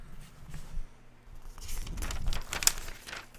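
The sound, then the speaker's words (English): Paper crumpling and crinkling for ASMR, recorded with a new audio mic: a dense run of crisp rustles and crackles that builds in intensity, with one sharp snap near the end and no talking. “I'm going to give you guys some of this paper ASMR, hard body karate, long way, strong way with this new audio Mike, I'll be right back.”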